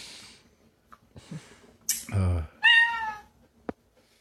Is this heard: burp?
no